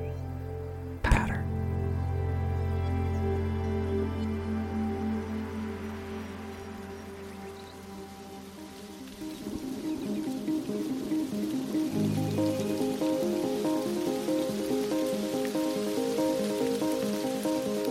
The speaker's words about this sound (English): Rain starts. I begin to run to my car, dodging droplets that kamikaze from the sky.